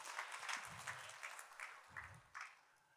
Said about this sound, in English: Give yourself an amazing hand clap.